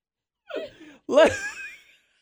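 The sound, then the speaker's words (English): Two loud breaths into the microphone: a short breathy intake, then a longer, partly voiced exhale that trails off, with no talking. “I'm breathing.”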